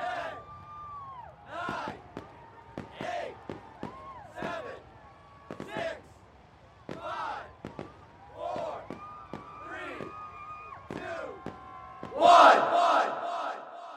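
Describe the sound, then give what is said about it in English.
A rowdy crowd at the possum drop in Brasstown, North Carolina, shouts and jeers at night in ragged bursts, with sharp bangs and cracks of loud fireworks scattered throughout, building to a loud, dense roar of yelling near the end. “An opossum, confused, injured, alone, dangles from a crane in utter terror, while excruciatingly loud fireworks blast the night air, and the crowd below grows more and more disorderly.”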